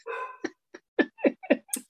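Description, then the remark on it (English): A dog gives a short whining yelp, then barks five times in quick, fairly even succession, clear with no talking over it. “So, and then the dog's barking.”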